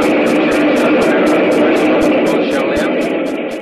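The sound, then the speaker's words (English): A train rumbles past outside during a wedding ceremony in a loud, steady roar, with a fast, regular clatter of wheels running through it that eases off slightly at the end. “Train out there. I couldn't hear.”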